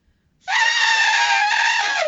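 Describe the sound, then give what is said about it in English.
A person lets out a loud, sustained elephant-like trumpeting call, a harsh, brassy vocal blast lasting nearly two seconds after a brief silence, ending with a slight downward drop in pitch. “I can make an elephant noise.”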